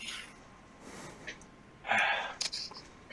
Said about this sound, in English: He takes a long, slow sip from a drink.